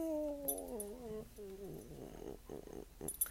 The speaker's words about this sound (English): not a dog coming up to me with his tongue, getting a petting and a patting. You want to talk into the microphone? Do that thing when I rub your ears.